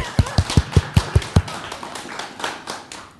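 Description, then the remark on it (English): An audience at Rev1 during the holiday season gives a woman another round of applause: a quick run of about seven sharp, heavy claps in a steady rhythm, followed by a softer wash of scattered applause that gradually thins out. “Let's give her another round of applause, folks.”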